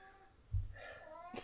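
A cat meows once, a drawn-out, wavering call that starts with a low thump and rises into a nasal whine before ending in a short sharp burst. No one speaks.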